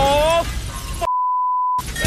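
A single loud, steady beep tone, like a censor bleep, holds for about three-quarters of a second, cutting abruptly into a burst of noisy, clattering sound with voices before it resumes.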